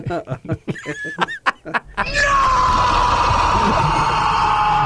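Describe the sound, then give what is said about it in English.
Brief choppy vocal sounds give way to a long, loud screamed 'No!', held for several seconds with a pitch that slowly sinks, harsh. “No, I think he screamed. Oh, did he? No, the long no.”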